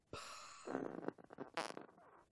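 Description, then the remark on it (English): A voice imitates a fart with a loud, sputtering blast lasting about two seconds, breaking into a few rough bursts before trailing off, with no talking around it. “Robert Pattinson, when he farts, it just goes...”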